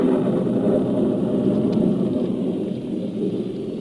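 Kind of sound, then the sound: nature, heavy rain cloudburst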